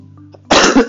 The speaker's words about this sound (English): Excuse me. Yeah. So, cough for some reason. There it is.